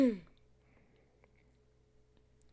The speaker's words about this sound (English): You just dabbed and coughed. That was an auntie ass move.